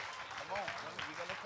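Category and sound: crowd, audience applause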